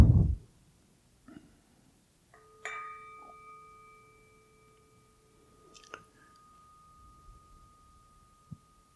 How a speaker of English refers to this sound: And now we want to relax. So take some deep breaths and listen to the bell.